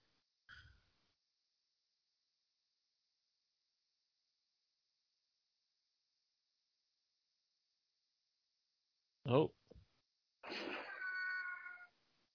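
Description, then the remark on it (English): A cat gives a short, sharp meow, then after a pause lets out a longer, drawn-out wavering meow, with near silence around them. “The cat going to save his ass.”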